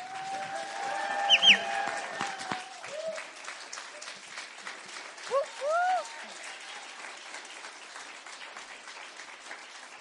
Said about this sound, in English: to stand up and cheer them on and hoot and holler for them, because when you give as much time as they do, it is worth us celebrating them. So if you guys would help me and cheer on